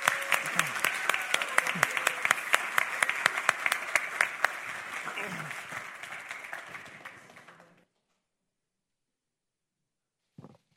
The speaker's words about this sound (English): And these four are that exemplified as Eagle Scouts. So let's give them a round of applause once more.